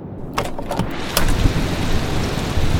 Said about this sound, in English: Can you believe it? A rainy summer's day in the Mediterranean city of Barcelona. A rainy day indeed.